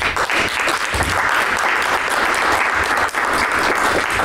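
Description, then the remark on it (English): An audience applauds the panel and moderators steadily, a dense wash of many hands clapping at an even, loud level with no pauses for the full few seconds. “All right, everybody, please give another huge round of applause for the panel and the moderators.”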